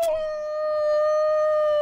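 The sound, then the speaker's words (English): A single long coyote howl in dark woods at night, heard by people sitting by a fire, holds one steady, clear pitch for nearly two seconds, loud, with no other sounds around it. “a coyote howled while we were sitting there in the pitch dark by a fire.”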